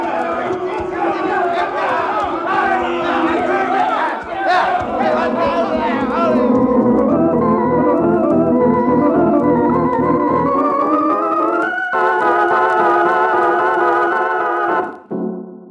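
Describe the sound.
A loud, steady din of many voices shouting and yelling over a rumbling, rhythmic pounding of stampeding cattle, panicked by shooting in the street, the thudding strongest midway before the clamor shifts to higher, sustained cries near the end.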